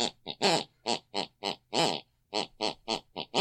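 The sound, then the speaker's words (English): An elderly woman snores in the room next door, heard distantly through the bedroom wall, in a quick, regular run of short, rasping snorts, each one pitched and voiced so the string of snores rises and falls almost like a tune. “Each week we press our ear against the bedroom wall, whatever my mother listened to, picks and pulls on her unconscious mind, and she snores that very song.”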